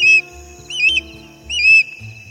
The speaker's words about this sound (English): Aha! We've found our fish killer. It was an osprey, a likely suspect. Those birds love boosting fish from lakes and ponds for their dinner.